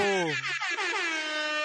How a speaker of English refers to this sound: There's the rap air horn I was looking for.